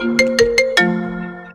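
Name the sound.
phone ringtone ringing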